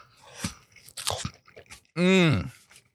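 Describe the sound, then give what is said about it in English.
Crisp crunches of someone biting into and chewing warm Costco cheese pizza crust, a few uneven bites in quick succession, followed by a loud, drawn-out hum of enjoyment. “I'm just going to take a couple bites.”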